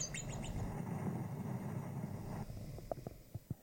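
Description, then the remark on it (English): A groundhog's shrill, birdlike whistling call: quick high descending whistles at the start, then a few short sharp chirps near the end, all over a low steady background rumble. “Sounded like a bird. Yeah, it does. It whistles.”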